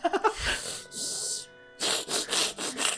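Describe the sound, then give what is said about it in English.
A voice mimics snoring with rough, raspy breaths: a drawn-out rasp, a brief pause, then four quick rhythmic grating snorts, loud and sawing in texture, with no other talking. “Reek, when you snore, what does it sound like?”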